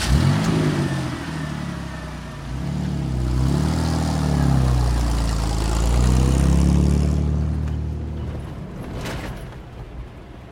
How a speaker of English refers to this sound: Elias watched the river station growing smaller in his rearview mirror as he followed another bumpy sand road into the side canyon that stretched south, away from the river.